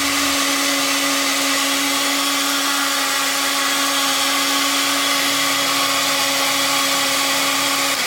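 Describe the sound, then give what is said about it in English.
A blender runs on its lowest speed, blending a mixture. It whirs steadily in a fairly loud, continuous motor drone with a constant humming tone that holds unchanged from start to finish, with no voices. “If I still wasn't satisfied with how it was all coming along, I could pour that mixture into the blender and use it on the lowest speed.”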